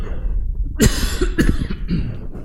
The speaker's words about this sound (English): I need to cough.